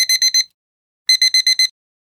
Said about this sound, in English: So, what's that sound? Shout it out. An alarm clock.